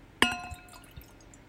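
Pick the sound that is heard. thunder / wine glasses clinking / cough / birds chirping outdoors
wine glasses clinking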